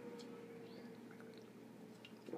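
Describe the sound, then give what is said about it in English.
Quiet liquid sounds of someone drinking water: soft wet squishes and small gulps over a faint steady background hum, with no talking. “Let me drink some water.”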